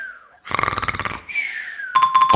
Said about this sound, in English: I climbed into bed, and pretty soon you could hear me snoring.